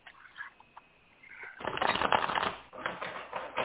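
A quiet rustle gives way to a dense, crisp riffle of a deck of tarot cards being shuffled, a fluttering burst lasting about two seconds, then a softer second shuffle trailing off.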